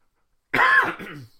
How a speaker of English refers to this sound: See the cough starting up.